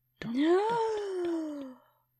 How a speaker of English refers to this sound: Gasp.